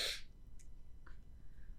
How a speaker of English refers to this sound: I have to sneeze, but it's not coming out. See that?